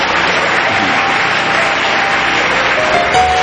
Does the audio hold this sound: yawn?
no